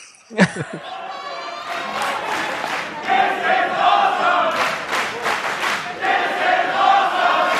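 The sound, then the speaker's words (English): A large crowd of Japanese people shouts the chant "This is awesome" loudly in unison, with rhythmic bursts of voices rising and falling over several seconds after a brief sharp cry at the start. “if you're going to get a crowd of Japanese people shouting, "This is awesome," then it's going to be.”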